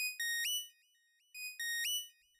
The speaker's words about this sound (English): Carell, as you're kind of fleeing this building to try and make your way through what is already a dense crowd, your communicator goes off.